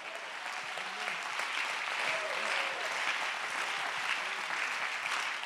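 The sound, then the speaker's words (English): A church audience claps hands to give God the praise, a steady, dense wash of applause that stays even and fairly loud throughout, with a few faint voices murmuring underneath. “Everybody clap your hands and give God the praise.”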